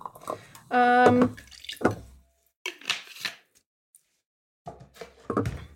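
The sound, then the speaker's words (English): Soda water poured into a glass in a few short bursts, with splashy, hissing trickles and brief pauses between pours, preceded by a short squeaky tone. “I'm adding a bit of soda water.”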